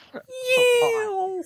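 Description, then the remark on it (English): A person sitting with arms out imitates a Boeing 747 jet airliner with one sustained, steady-pitched vocal whine lasting over a second, fairly loud, with no other sounds around it. “You can't see me, but I'm sat here with my arms out and I'm pretending to be a Boeing 747. Like, meow!”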